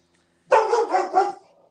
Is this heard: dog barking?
yes